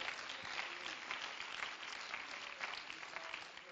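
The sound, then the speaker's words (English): An audience claps their hands in praise to the Lord, a steady, dense wash of applause that stays loud and even for several seconds, with many overlapping hand claps and no voices standing out. “Oh, come on, let's clap our hands and give praise to the Lord.”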